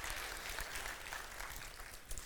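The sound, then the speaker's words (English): An audience claps steadily, a dense, continuous patter of many hands at an even, fairly strong level that holds for the whole couple of seconds without any talking. “Yeah, we get your hands clapping on that.”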